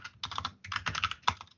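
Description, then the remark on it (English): Quick bursts of typing on a computer keyboard while searching something on Google, fairly soft, with rapid clustered key clicks in short runs separated by brief pauses. “My typing is great right now.”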